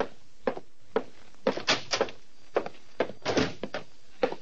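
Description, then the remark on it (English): A heavy oak door opens and shuts, with a series of solid thumps, latch clicks and knocks spread over a few seconds, and no voices. “Titus Wolfe, secretary to Vincent DeWitt, nodded toward the heavy oak door”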